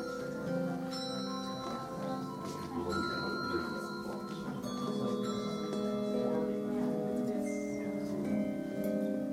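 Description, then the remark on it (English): Several handbells are struck with mallets that are passed around so everyone gets a try, their sustained metallic tones layering and ringing on over low background chatter and room noise, moderately loud. “Pass the mallets around so everybody gets to try it.”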